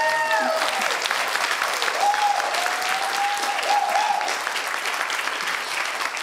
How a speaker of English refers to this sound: So give her a round of applause for that.